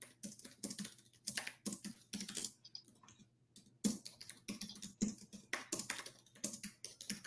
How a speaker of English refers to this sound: All right, let's see. I'm just typing something in here to see.